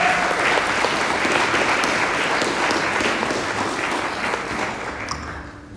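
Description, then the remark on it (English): An audience at a morning church service claps steadily to welcome a visiting reverend, a dense, even patter of many hands that holds strong throughout and eases off slightly near the end. No one speaks over it. “would you come and join me in the front and give him a round of applause?”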